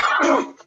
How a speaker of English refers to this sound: … sneezes violently.